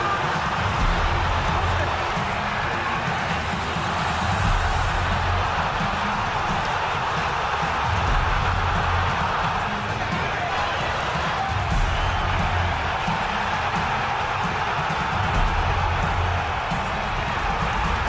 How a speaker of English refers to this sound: Well, unfortunately, it just sounded like a lot of generic crowd noise. That was actually the Icons just making crowd noise.